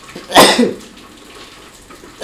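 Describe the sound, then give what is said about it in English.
A loud sneeze bursts out, followed by a stretch of near silence before another sharp sneeze begins right at the end. “I would say, I didn't say bless because these comes in waves.”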